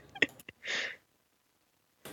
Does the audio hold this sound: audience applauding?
no